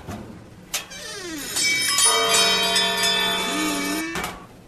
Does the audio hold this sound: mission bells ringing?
yes